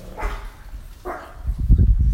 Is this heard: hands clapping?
no